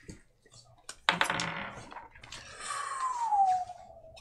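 A set of dice is rolled across a table during a Pathfinder game, tumbling in a quick burst of rattling clicks, fairly loud, and landing on a 19, followed by a soft tonal sound as the clatter settles.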